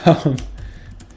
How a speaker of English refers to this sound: Oh, okay, there we go. I was just typing in the wrong numbers.